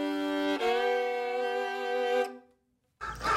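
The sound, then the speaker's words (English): A rooster in a chicken coop crows once in a long, drawn-out, strongly pitched call, loud, that breaks off into a brief silence before another noisy sound begins. “Hey everybody, good morning from the very noisy chicken coop. They are all got a lot to say today.”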